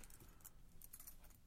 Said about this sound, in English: You got fucking janitor keys. Are you sure this is not entertaining? All right, it's pretty good, actually.